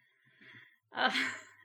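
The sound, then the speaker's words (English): An old pet named Ollie snoring: a soft, airy intake of breath followed by a louder, rougher breathy snort, with no talking. “If you can hear Ollie snoring, I apologize.”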